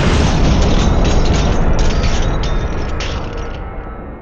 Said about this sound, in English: The thundering sound of something crashing to the ground sent the group ducking for cover. Still holding on to each other, they looked to see if anything did fall down, but nothing of the sort happened.